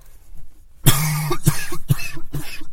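A fit of harsh coughing from a speaker with a lingering cough: several forceful coughs in quick succession after a brief quiet moment, loud and raspy, with no talking.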